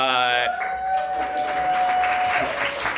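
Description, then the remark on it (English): An audience at a live short-story reading event breaks into steady, dense applause for one of the curators, lasting about three seconds, with a long sustained whoop or whistle held above the clapping. A brief voice is heard at the very start. “so you'll have another chance for a lot of applause for her.”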